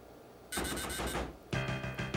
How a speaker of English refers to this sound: I love how the sound effects guy was like, how many times did she hit the buzzer? Fuck it, we won't play the last one.